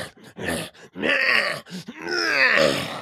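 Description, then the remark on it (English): A voice imitates heavy breathing: a short series of loud, drawn-out, groaning breaths, each rising and falling with brief gaps between, no words spoken. “The head teacher has not seen me, but she hears a noise. Heavy breathing up there, it's me.”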